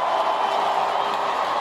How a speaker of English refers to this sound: And then when William and Kate came out onto the balcony, of course, to kiss. Lots of shouts from the crowd here.